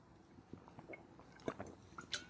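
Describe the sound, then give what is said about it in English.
Quiet sips of water from a bottle, with small wet squishes, lip smacks and a gulp spread over a couple of seconds, and no talking. “Oh, constantly wetting this scratchy whistle.”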